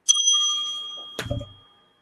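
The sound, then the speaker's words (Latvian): A small bell rings once with a bright, sustained tone that slowly decays, then a second clanging strike with a rattling, lower thud cuts it off. Fairly clear, no voices. “Tie, kas nesaprat, tas ir zvaniņš.”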